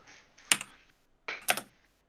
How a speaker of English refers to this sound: Sounds like a Model M keyboard.